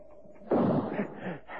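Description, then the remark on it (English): A single sharp rifle shot, fired at a tray beside Holmes sitting in a chair, cracks out after a brief hush, its booming report rolling on and trailing off over the next second. “I have the tray in the sights of the rifle.”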